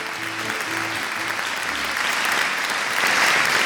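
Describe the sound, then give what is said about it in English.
Canned studio-audience applause for a mock game show segment called the Mystery Voice, a dense, steady wash of clapping that swells slightly toward the end, with a few faint low tones fading out in the first couple of seconds. “Studio audience really pumped up about that. All the very applause.”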